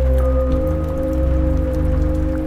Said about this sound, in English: Rain is still splattering on the roof and leaking into the bucket.